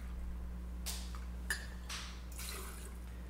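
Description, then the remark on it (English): About 2 ounces of Alma Reposado tequila pours into a large party cocktail shaker over ice in a few short splashy bursts, fairly quiet against a steady low hum, with no one talking. “You pour approximately about 2 ounces of Alma Reposado.”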